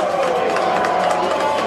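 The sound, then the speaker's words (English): A loud stadium crowd at a football game roars steadily, a dense, sustained wash of cheering voices with no breaks, filling the whole short stretch at an even, high level. “and the momentum is certainly in the favor of this loud crowd right now.”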